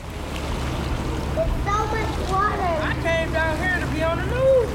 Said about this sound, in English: Two boys are biking through ankle-high water as they approach the most flooded area of Jefferson-Chalmers. The neighborhood borders a series of canals at the point where Lake St. Clair becomes the Detroit River.